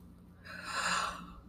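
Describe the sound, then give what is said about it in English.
A single soft, breathy yawn during a guided seated yoga session, swelling over about a second and then fading, heard alone with a faint low hum underneath. “Excuse my yawn.”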